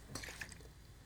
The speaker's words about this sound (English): Okay. I know what that was supposed to do, but I don't think it worked. Okay, in case you're wondering about the spray bottle, I gotta go get a spray bottle. She shook a closed bottle.